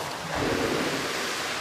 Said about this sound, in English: You can put the hinges on the bottom, and then you can open it by sort of slamming the door down. Motors push open the doors, and the doors push the water in the pool. These motors we can control. So we create the waves that we want.